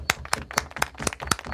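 Audience clapping in a steady, evenly spaced rhythm: about seven sharp, crisp claps in quick succession at moderate loudness, with no voices over them.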